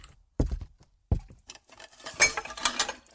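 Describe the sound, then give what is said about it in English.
A glass is dropped into a sink, landing with two sharp knocks followed by a brief rattling clatter and clinking against hard surfaces. “Seth gulped down the rest of his drink and dropped the glass into the sink.”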